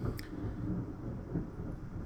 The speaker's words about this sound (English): Oh yeah, some thunder.